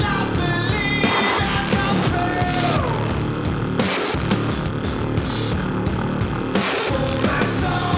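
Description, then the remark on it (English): A heavily distorted bass holds one loud, grinding note D for the whole stretch, thick and saturated. A faint voice yelling loudly from across the room sounds beneath the roar. “Just the note D played on the filthiest bass you've ever heard.”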